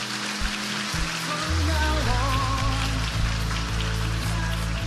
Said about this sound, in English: Give God a hand clap in this place today.